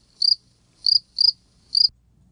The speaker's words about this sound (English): Nothing. Crickets.